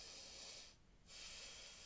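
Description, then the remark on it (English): A voice imitates a classmate's heavy, huffing breaths: two long, hissy bursts of air separated by a brief pause, with no talking. “No, because it's like, it's literally not just like him. It's like a huff. Yeah, it's not just like breathing.”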